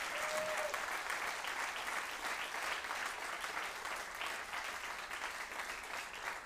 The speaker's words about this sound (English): And as he comes up, will you please honor him and just give him applause saying thank you for being faithful.